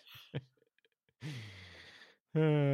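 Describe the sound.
A person gives a long, drawn-out yawn, breathy with a low voiced groan, after a quick intake of breath. A voice starts loudly right as it ends.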